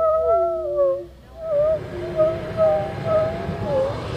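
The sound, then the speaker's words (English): Eerie, wavering tonal howls from a fire organ, a large rig of panpipes on a wheeled cart built in Norwich, Vermont, heated with a propane torch; several overlapping sustained tones slide and wobble like whale song over a rumbling, noisy low background. “But when you tease it with a propane torch, it sends forth sounds like the songs of the humpback whale, or a pack of foxes, or perhaps the rumbling guts of some distant star.”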